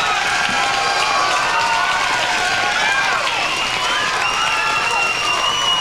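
A large crowd applauds and cheers loudly and continuously, dense clapping mixed with whoops and shouts filling the whole stretch without pause.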